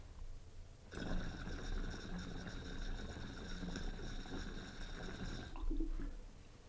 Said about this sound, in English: Nice little chirp on that. Love the sound of that water when it moves and pops through those perks.